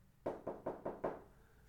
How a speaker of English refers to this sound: So I knock on the door, right?